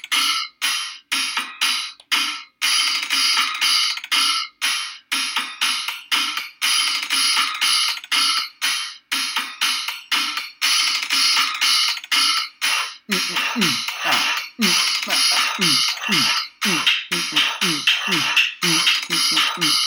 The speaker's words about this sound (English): So I think we need our very own pots and pans celebration here. We're going to have a minute of just banging of pots and pans in celebration of the restaurant industry.